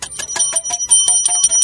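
A quiz buzzer going off as a contestant buzzes in half a second sooner, a rapid, high-pitched ringing trill, about ten quick metallic strikes in under two seconds, loud and steady with no voices over it.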